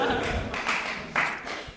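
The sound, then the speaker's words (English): Brief, tepid applause from an audience for the pioneers: a thin, half-hearted patter of scattered claps that swells slightly a couple of times before fading, with no voices over it. “Tepid applause for pioneers.”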